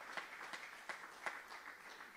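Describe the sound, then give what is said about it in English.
Applause from an audience during a sermon, giving the Lord a hand clap of praise, a dense wash of hand claps with a few sharper claps standing out at a steady, roughly regular beat. Fairly soft, with no voices. “Give the Lord a hand clap of praise right there.”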